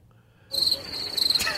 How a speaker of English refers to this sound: Crickets. We got a cricket sound effect, too. This one is called Crickets.